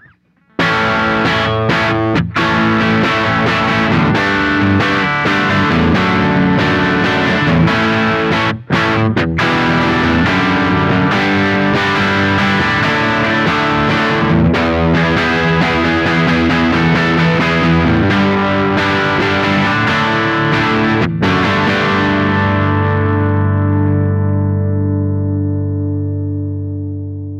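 An electric guitar plays loudly through an amp on a crunch setting with a gritty crunch tone. The Bright channel is engaged, the amp is switched down to 2 watts, volume and treble are at 1 o'clock and bass is at max. Strummed, sustained chords with brief pauses end on a long ringing chord that slowly fades. No one speaks.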